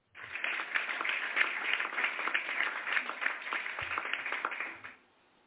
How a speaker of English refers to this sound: Y'all see, I love that clap already.